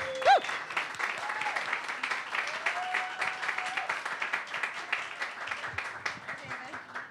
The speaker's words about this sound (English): Welcome to the stage. Big round of applause